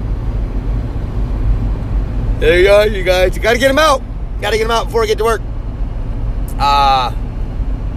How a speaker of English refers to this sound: I gotta turn the heat up. Sorry if you guys hear this fan or not.